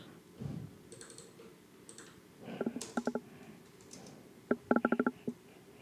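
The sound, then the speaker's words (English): Keys clatter on a computer keyboard as a Facebook message is typed, in two quick bursts of crisp clicks separated by brief pauses, over a quiet hush with no voices. “I'm typing a Facebook message.”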